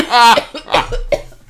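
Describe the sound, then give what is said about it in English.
A loud cough that starts as a voiced, imitated-sounding hack and breaks into a few rough, genuine coughing bursts over about a second and a half. “Then turned into a real cough, no, I think.”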